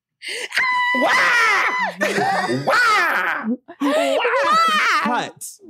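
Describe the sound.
A voice lets out a series of loud, theatrical shrieks and wails, three or four long bursts with wavering, sliding pitch and brief gaps, performed without words as a character's shriek when a Dilophosaurus pounces in a scene.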